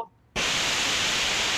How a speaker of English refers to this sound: And that is the perfect time for static to come in. Static. TV static for some reason.